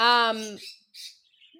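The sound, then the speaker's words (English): Pet parakeets chirping: a loud, buzzy squawk followed by a brief, higher chirp after a short pause. No one is talking. “Oh my God, my birds. She has parakeets, apparently, along with emus.”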